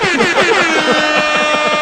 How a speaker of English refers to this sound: And Ben, if you could just put that air horn sample in.